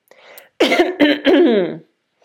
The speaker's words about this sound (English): Okay, let me clear my throat here. Hang on.